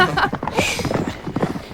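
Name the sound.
horse hooves clip-clopping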